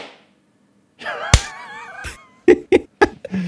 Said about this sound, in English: Do you want to clap? Are we clapping? Oh, let's clap. Ready? All right. 3, 2, 1.